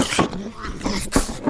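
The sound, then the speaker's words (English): A metal box rattles inside a piano, giving a few sharp, irregular clattering bursts over a low, hollow rumble, with brief quieter gaps between the knocks. “It sounds like something's rattling around in there.”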